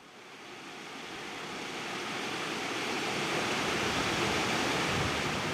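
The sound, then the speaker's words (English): Rushing river water pours steadily over a salmon leap at its upstream fish trap, a dense, continuous roar that swells slightly louder over a few seconds, with no voices. “Yeah, so we're at the upstream trap on the leap, the salmon leap”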